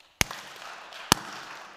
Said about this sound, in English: Clap your hands, all you nations. Shout to the God who cries with joy. Can we clap?